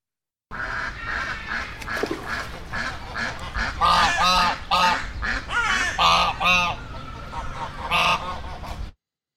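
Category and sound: bird, ducks quacking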